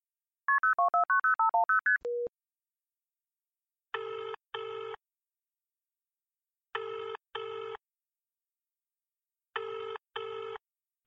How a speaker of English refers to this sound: Using a deep scan of internet databases, we were able to track down the phone number of the host, and I initiated a call with the human.